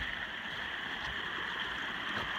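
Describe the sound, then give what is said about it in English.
A steady, continuous rush of flowing water from the Peavine Fall waterfall, passed during a trail run, with an even hiss and no voices. “I can hear the water. Can you hear that in the background?”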